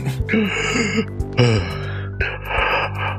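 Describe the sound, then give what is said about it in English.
A voice imitates the heavy breathing of a pale, naked man strapped to a table, drawing in several loud, raspy gasping breaths one after another, with no words spoken. “And he's just breathing in heavily.”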